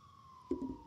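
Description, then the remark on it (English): A steady fire truck siren tone drifts slightly downward in pitch as the truck passes by at 9:30 in the morning, with a brief low rumbling burst of traffic noise partway through. “It's a fire truck passing by.”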